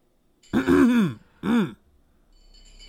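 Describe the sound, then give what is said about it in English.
Someone rises to their feet and clears their throat twice, a longer rough voiced rasp followed by a shorter one, fairly loud with quiet around it. “Rising to your feet, you clear your throat.”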